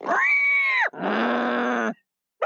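pig grunting

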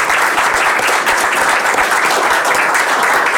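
audience applause

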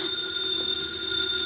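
telephone ringing

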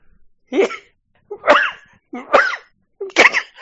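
coughing fit

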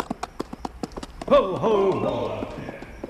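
horse hooves clip-clopping

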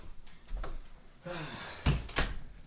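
door being closed

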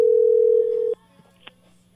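telephone dial tone

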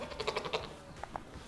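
goat bleating

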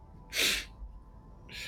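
sneeze

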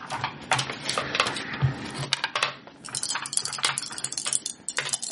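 dice being rolled

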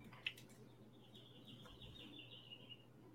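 birds chirping

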